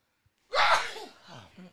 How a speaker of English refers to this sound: Let me sneeze first.